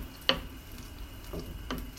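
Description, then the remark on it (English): A wooden spoon knocks sharply once against a low-walled skillet, then squelches twice more softly as tomatoes in their juice are crushed, over a steady low sizzle of cooking. “Just doing that with a wooden spoon. If you have a high-walled pot, you could just reach in and squash them with your hands, which is a little messy, but also faster.”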